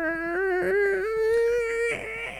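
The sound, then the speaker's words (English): A slow, drawn-out creak of the front doors swinging inward: one continuous, whining squeal that wavers slightly in pitch before breaking into a rougher scrape at the end. It is fairly loud, with no talking. “However, as you step towards the front doors, they open inwards slowly with a creepy.”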